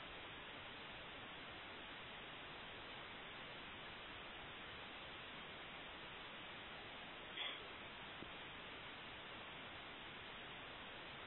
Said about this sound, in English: Aaron, it's probably not you, but check your line. I'm getting strong static.